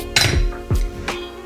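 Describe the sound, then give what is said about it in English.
Three sharp glassy clinks of a wine glass of Cupcake rosé in quick succession, fairly loud, each leaving a brief ringing tone. There is no talking. “I am sipping on one of my favorite rosés.”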